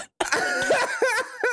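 A man leans into the microphone and coughs loudly right into it, harsh and raspy with a strained voiced edge, trailing into a couple of shorter hacking bursts.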